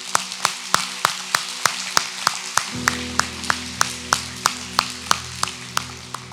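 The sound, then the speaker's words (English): An audience claps in a steady, even rhythm, roughly three sharp claps per second, with a sustained low musical tone joining partway through. “You can clap.”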